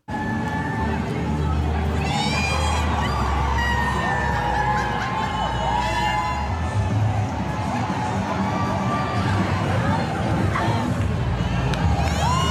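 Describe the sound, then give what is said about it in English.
A large outdoor all-ages crowd at a Pride Festival in Minneapolis, Minnesota roars and cheers continuously, with scattered shouts, whoops and high excited voices rising above a dense, steady wall of babble. “We're going to travel to Minneapolis, Minnesota, where a man participating in the Pride Festival began twerking in front of the all-ages crowd in his underwear for, like, literally no apparent reason at all.”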